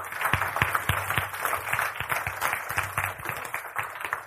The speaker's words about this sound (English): All right, let's, okay, if you're back from school, raise your hand. Let's give them a round of applause for working so hard.